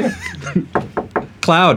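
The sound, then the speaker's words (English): A voice imitates knocking on a door with a few evenly spaced knock sounds, followed by a drawn-out vocal sound, fairly loud. “Just knocking on the door.”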